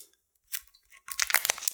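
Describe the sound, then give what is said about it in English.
Thin perforated plastic shrink wrap crinkles and tears as it is removed from a liquor bottle, starting with a brief rustle, then a louder, sustained stretch of crackly ripping, with no one speaking. “It has a plastic shrink wrap, and then there's appears to be a paper strap on it. Nicely perforated plastic.”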